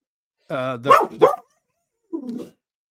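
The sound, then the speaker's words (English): A German Shorthaired Pointer barks: a whiny, drawn-out yelp that breaks into two sharp barks, then after a short pause one lower, gruffer bark. “you have a dog named Winchester? I do. A German Shorthair Pointer.”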